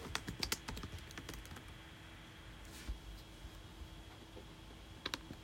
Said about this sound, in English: Sorry if you hear my keyboard. Can you hear my keyboard? A little bit. Sorry, viewers, if you can hear my keyboard. I'm literally playing video games the whole time.